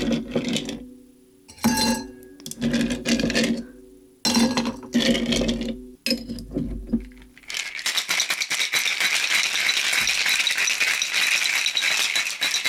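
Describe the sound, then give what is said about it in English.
Ice cubes clink and tumble in bursts at first, then rattle hard and continuously as a cocktail shaker holding dry gin and ice is shaken vigorously, loud and bright with no talking. “And then I'm going to shake this up and then pour. Actually, I kind of want ice in there.”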